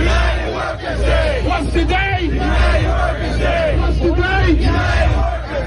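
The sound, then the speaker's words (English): A large crowd at a May Day protest celebrating International Workers' Day chants and shouts together in rhythmic, repeated phrases, many voices rising and falling in unison over a steady roar of noise. “talking to participants in the May Day protest yesterday, celebrating International Workers' Day.”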